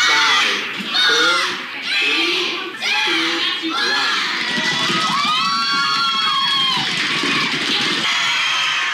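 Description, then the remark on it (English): Students on a balcony scream and cheer excitedly after a successful world-record cereal box domino run of more than 7,000 boxes, a dense, loud roar of overlapping shrieks and shouts that rises in bursts and keeps going without pause for several seconds. “I knew that a lot of people were excited today because everybody on the balcony were screaming.”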